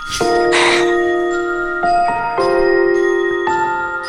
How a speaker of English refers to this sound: More piano. But I like the background. It's like bells. This is like a Christmas thing.